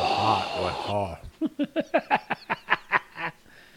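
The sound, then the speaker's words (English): A brief voiced sound at the start, then a quick run of about ten loud, rhythmic, snorting breaths as a man breathes heavily while taking a bite of a moist, raisiny dessert. “The king of the heavy breathers club's eating it.”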